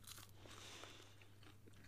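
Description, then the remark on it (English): A crisp crunch of someone biting into a fried chip (a fry) from TGI Friday, with crackly chewing noises continuing over a steady low hum and no talking. “That was a very satisfying crunch it made, actually.”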